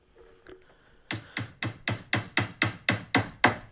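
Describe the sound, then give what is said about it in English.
A hammer drives a nail with about ten sharp, evenly spaced blows, each a bright metallic strike with a short ring, fairly loud after a quiet start. “It's a hammer nailing something in.”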